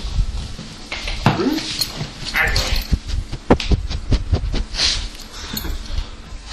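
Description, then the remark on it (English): A big dog snuffles and mouths right at a dictaphone, trying to eat it, with handling bumps, soft whimpering noises and sharp clicks of teeth or claws against the recorder. “He's now trying to eat the dictaphone, so I'm going to take it away from him.”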